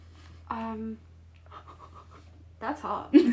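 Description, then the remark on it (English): A dog named Ivy pants in quick, rhythmic huffs, with brief voice-like vocal sounds before and after the panting and a low steady hum underneath. “Ivy's a dog, by the way.”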